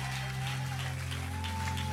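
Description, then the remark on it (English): A church audience at a service claps together in a dense, steady wash of applause over a sustained organ-like tone, loud and continuous for the full two seconds with no voices. “Give me a hand clap.”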